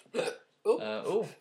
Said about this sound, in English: Stephen King could write a story about that hiccup.